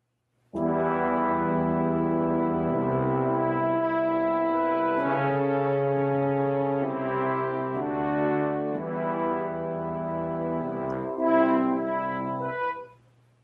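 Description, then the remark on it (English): The opening ten notes of the Avengers theme, played as a clue in a music quiz game on a loud, brassy instrument as a sequence of sustained tones with shifting pitch and a swell near the end, with no talking. “It's the Avengers.”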